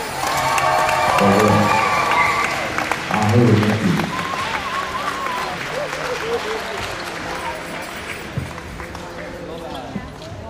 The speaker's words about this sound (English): And our first place winner. A big round of applause for all our contestants.